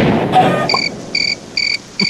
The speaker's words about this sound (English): Oh, the crickets got some love in that one.